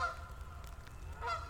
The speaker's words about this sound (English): And there's some Canada geese.